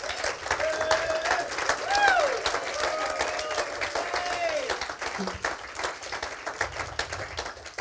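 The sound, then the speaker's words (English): An audience applauds with hand claps to thank a team for their weekly work setting things up: a dense, steady patter lasting about eight seconds, with a few voices cheering and whooping over the first half before the clapping alone carries on. “They've got it hooked up once now, so hopefully now from here on out, it'll start going more smoothly, but this is not all easy, and they did this every single week for months, and so I just wanted to give them a hand clap, if you would, please.”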